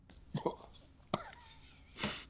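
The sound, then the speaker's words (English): A few short, abrupt burps after drinking eggnog and beer pop out in quick succession, moderately loud, with a sharp glottal catch in the middle and a breathy one trailing at the end. “How are you burping off of eggnog?”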